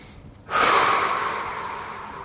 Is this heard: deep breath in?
yes